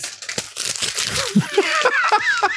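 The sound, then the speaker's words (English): Paper is crumpled up with a steady run of crackly, crinkling rustles and sharp snaps for a couple of seconds, fairly loud throughout, with a few thin squeaky tones mixed in. “Give me some paper to crumble up.”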